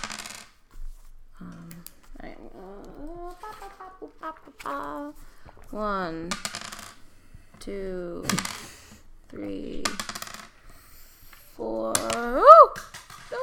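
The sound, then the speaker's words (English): Dice, including a d4, rattle and clatter across a hard surface several times as damage is rolled for a cloud of daggers, sharp bright clicks recurring every second or two, with murmured voices and vocal sounds in between. “So go ahead and roll damage.”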